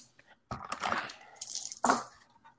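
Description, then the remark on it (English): Three purple dice clatter and tumble across a hard tabletop in a short burst, then a second sharp rattle as they settle, with a faint murmur of voices in the background. “I rolled zero, nothing.”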